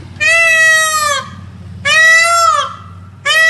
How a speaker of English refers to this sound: Their call is unmistakable, their plumage jaw-dropping. But the dozens of feral peacocks that strut their stuff around a Surrey neighborhood are under fire for a peculiar habit.